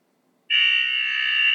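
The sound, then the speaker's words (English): A loud, sustained electronic buzzer blares suddenly after a brief quiet and holds steady without a break: the fourth-quarter buzzer ending a basketball game. “And that is our fourth quarter buzzer.”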